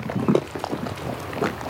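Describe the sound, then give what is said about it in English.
A bubbling mud pot on the Fountain Paint Pot Trail in a park gurgles, with irregular, thick low plops and blooping bursts as gas rises up through the mud, set over a steady background hiss. “Because you have some gas coming up through that that's just coming up through the mud and it makes a cool sound.”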